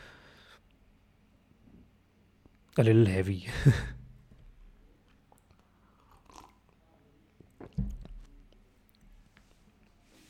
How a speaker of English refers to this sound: Now let's just take a sip of something.